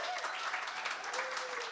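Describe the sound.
An audience applauds in a dense, steady wash of many hands clapping at once, holding an even loudness throughout with a faint whoop or voice rising through it.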